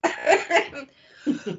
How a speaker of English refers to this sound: sorry. This cough is terrible.